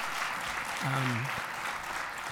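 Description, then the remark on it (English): Steady, dense audience applause in a large room for a set of presenters; many hands clap in a wash of applause, with a short voiced cheer rising briefly above it partway through. “I hope you'll join me in giving all of our presenters one more round of applause.”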